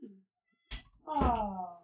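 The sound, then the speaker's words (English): A sharp thump sounds, then a cat lets out one loud, drawn-out meow that slides downward in pitch, insistent, as it cries at a door. “Oh, that's Maya. Oh, screaming at the door. She might have been on microphone.”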